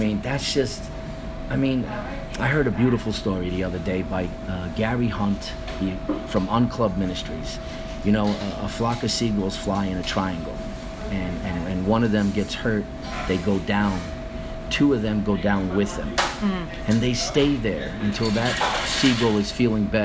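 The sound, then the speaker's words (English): A man talks steadily over background ice noise: a constant mechanical hum with occasional faint clattering and rattling bursts, especially toward the end. “And I'm sorry about the ice noise in the back.”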